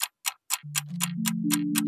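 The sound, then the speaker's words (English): An old-fashioned clock ticks steadily and briskly, about eight clear ticks in under two seconds, while a low sustained drone swells in underneath and layers upward partway through. “So, take an old-fashioned clock and wind on 4 years.”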